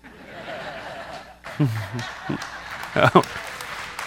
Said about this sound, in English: That was a weird one to get claps for, but all right, we'll go with it.